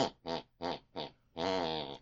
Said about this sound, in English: Whatever my mother listened to before she went to bed picks and pulls on her unconscious mind. And that's the tune she is snoring.